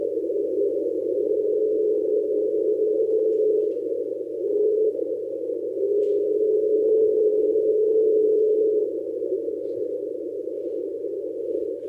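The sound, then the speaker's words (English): An underwater recording captured by NOAA, called 'the train', of a steady, low, horn-like drone that resembles a distant train horn, holding one pitch for about twelve seconds with a slight dip partway through and no voices. “Sounds like a train horn.”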